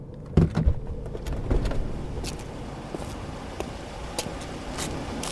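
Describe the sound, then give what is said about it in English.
A car rumbles low and steady as it comes to a halt, with a few sharp mechanical clunks and clicks, like a door or window mechanism, and no one talking. “Stop the car!”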